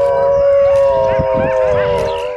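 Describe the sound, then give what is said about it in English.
A wolf howls in one long, steady, mournful note that holds loudly for a couple of seconds, with some rustling noise underneath. “Your classic wolf.”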